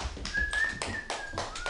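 Audience applause for a comedian at a stand-up comedy show: a dense wash of clapping with rhythmic, regularly spaced bursts, while a thin, steady high-pitched whistle runs through most of it. No one speaks.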